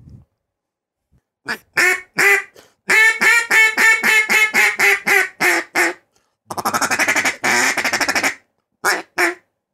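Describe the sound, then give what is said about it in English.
A duck call blown in a series of loud quacks: a rapid descending run of raspy notes, then a buzzy drawn-out feed chatter, ending with a couple of short quacks. “Hey, let's hear a duck call.”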